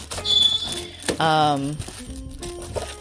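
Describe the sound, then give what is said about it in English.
A pet African grey parrot says hello with a high whistle, then a loud, buzzy, harmonic squawk lasting under a second, followed by a few softer chirps and short tones. “that's my African gray parrot saying hello to everybody.”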